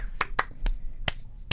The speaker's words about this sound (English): Spontaneous applause has broken out.